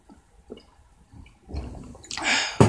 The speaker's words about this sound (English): Drinking some detox water right now.